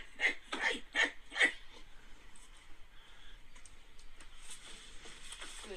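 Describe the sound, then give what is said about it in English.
A man running around like a dog imitates dog noises, letting out four quick, sharp yapping barks in a fast burst near the start, followed by a few seconds of quiet shuffling and faint background noise. “Yeah, so that guy's running around like a dog, man, and making those dog noises.”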